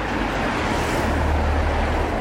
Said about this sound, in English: More traffic coming through.